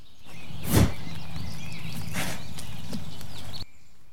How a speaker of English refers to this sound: We actually had a little deer watching our van for quite a bit. I think she might have been curious and sniffing out my recorder because I heard this in there.